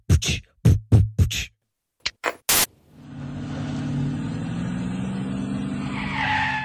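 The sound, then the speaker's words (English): A few sharp bursts of noise, then a new car's tires screech in a long, loud skid with a rough engine rumble underneath, the squeal rising near the end as it stops. “What's with the car?”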